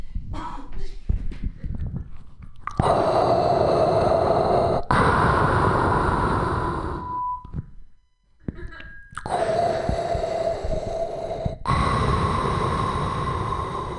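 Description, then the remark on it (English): A voice imitates heavy mechanical respirator breathing: four long, loud, raspy breaths alternating in and out, with a brief pause midway. “This is my impression of Darth Vader smoking marijuana.”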